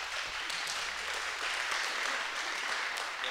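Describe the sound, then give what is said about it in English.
An audience claps steadily for a few seconds, a dense, even wash of many hands that holds a constant level from start to finish, with no voices rising above it. “Since you two haven't been on stage a lot, I'm just going to tell you, when they clap, that means shut up and move on, Pastor.”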